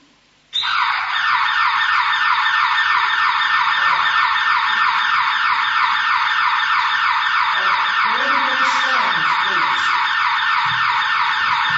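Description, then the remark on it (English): A loud alarm siren, played as a sermon illustration and not a fire alarm, blares suddenly after a brief silence and keeps wailing steadily, its rapid warbling tone continuing unbroken until the end. “This is not a fire alarm. It is a sermon illustration.”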